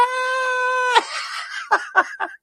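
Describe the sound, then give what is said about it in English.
At a Board of Supervisors public meeting, a woman lets out a loud, piercing scream held for about a second, then breaks into three short, ragged shrieks. The sound stands alone. “What's more performative than saying, "Hi, I'm going to scream now"?”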